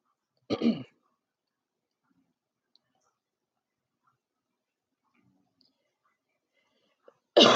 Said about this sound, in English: I'm sorry, I'm back. Trying to clear my throat.